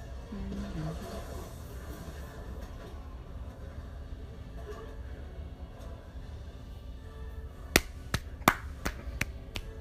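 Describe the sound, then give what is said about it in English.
Five quick, sharp hand claps near the end, crisp and fairly loud, following a long stretch of steady low rumble like a moving train. No one speaks. “That's just me clapping.”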